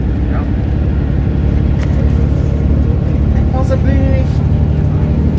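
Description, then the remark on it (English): Buses rumble loudly and steadily at a bus interchange, a deep idling engine drone filling the scene, with faint indistinct voices and a brief higher whine partway through. “The bus interchange right here.”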